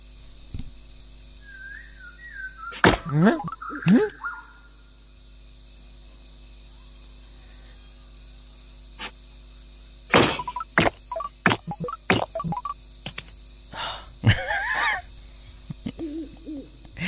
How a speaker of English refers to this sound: I'm playing a game on my iPhone, and I love the noises. Listen to that.